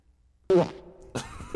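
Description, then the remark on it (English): A loud, sudden fart bursts out and rings with a hollow, echoing tail, followed shortly by a second noisy burst of sound, with no talking. “A lot of echo in your pants.”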